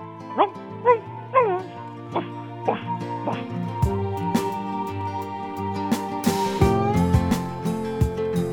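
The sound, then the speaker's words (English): A person imitates a dog, giving about six sharp, yelping barks in an uneven rhythm, fairly loud, before music with a steady beat takes over. “Bark for me. Bark. Go on, bark like a dog, bitch.”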